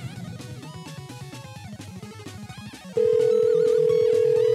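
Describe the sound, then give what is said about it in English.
A cell phone rings on a call with a busy, melodic ringtone for about three seconds, then a loud, steady electronic tone cuts in and holds. No one speaks. “Let's try the cell phone.”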